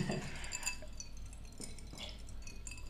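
Glasses of El Silencio Mezcal clink together in a toast in an office, a light, bright chime near the start that rings briefly before fading into a quiet hum. No one speaks.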